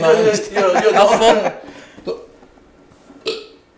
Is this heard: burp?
yes